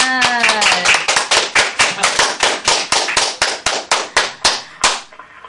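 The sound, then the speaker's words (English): A group claps together in steady unison to congratulate a new center, about four loud, sharp claps per second for five seconds. A voice briefly rises over the first second, then the claps continue alone before stopping. “Everybody together, clap hand.”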